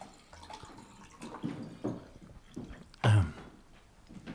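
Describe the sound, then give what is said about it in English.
Quiet water sounds: a few soft drips and splashes at an uneven pace, then a louder knock or slosh near the end, as if water is being poured or sipped. No talking. “Let me get some... I had some water. I have some water. Oops.”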